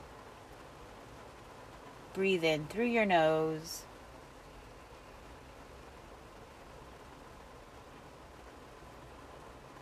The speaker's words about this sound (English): And you could hear the rain falling. I'm in my car and you can hear the rain falling.